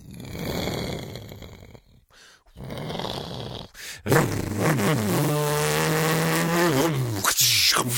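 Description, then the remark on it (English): A voice imitates a motorboat engine revving, a loud, buzzing drone that rises and falls in pitch for several seconds after a brief stretch of rougher vocal noise. “I'm pretty sure they didn't have boats with motors back then.”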